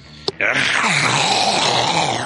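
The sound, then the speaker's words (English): A voice imitates a phlegmy, lion-like growl: after a brief click, a loud, raspy, gurgling roar holds steady for about two seconds, rough and throaty with a wavering low pitch. “It sounded like kind of like a cross between a lion and a, I don't know. It was a phlegmy lion.”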